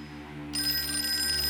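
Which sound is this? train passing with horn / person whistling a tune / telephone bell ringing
telephone bell ringing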